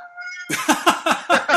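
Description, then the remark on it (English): A cat meows loudly and insistently, a rapid string of about five harsh, drawn-out yowls, preceded by a brief faint tonal whine. “The cat does not agree. The cat is completely against the idea.”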